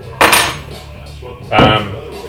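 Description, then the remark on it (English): Two sharp metallic clinks, a second apart, as the cap is pried off a Corona Premier beer bottle with a tiny metal opener, bright and clattering over a low steady hum. “I never use my built-in opener. I always use my tiny opener.”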